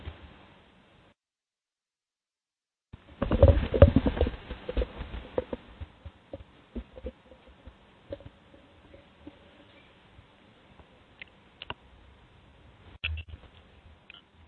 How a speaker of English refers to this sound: What kind of keyboard is that? It's very clicky, or somewhat clicky.